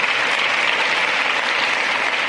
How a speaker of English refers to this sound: Now let's hear a whole applause.